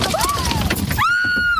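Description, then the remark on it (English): Golf ball-sized hail hammers a car in Alberta, Canada, in a dense, continuous clatter, with three people inside, and window glass shatters under the pounding, while a high, sustained wail rises over the din near the end. “Watch as this car is pummeled by golf ball-sized hail, smashing windows for an agonizing 17 minutes.”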